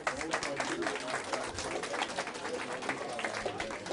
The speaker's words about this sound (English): Round of applause, first of all.